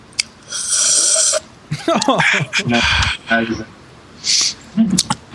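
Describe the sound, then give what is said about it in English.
A sip of fizzy Pepsi Cherry soda followed by several rough, raspy throat-clearing bursts, gurgly and breathy, with brief pauses between them and no speech. “Allow me to clear my throat with Pepsi Cherry.”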